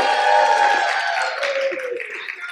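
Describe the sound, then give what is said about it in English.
At a gathering, an audience breaks into sustained applause for a woman who earned her MDiv, a dense wash of clapping mixed with some cheering voices, holding strong before gradually thinning and easing off toward the end. “I wanted to be the one to say that so they would clap for you.”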